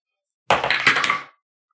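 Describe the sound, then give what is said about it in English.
A loud clatter of dice tumbling across a hard tabletop, a quick burst of rattling clicks that lasts under a second before settling into silence. “All right, Griff, you're rolling too. I see you not picking up your dice.”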